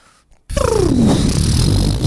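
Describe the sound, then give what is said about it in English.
After a brief silence, a voice imitates a balloon deflating: a loud, buzzy, sputtering rush whose pitch slides steadily downward for about a second and a half before settling into a low rattle. “It's more like, can you do like a balloon deflating?”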